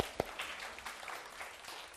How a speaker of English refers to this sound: Thank you, sis. Let's give her a hand.